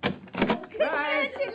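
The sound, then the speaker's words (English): An apartment door on a top floor, 12 floors up, opens with a short scrape and clatter as a woman lets someone in from the elevator, followed right away by a voice speaking over the settling noise. “For as you step from the elevator and she opens the door to let you in...”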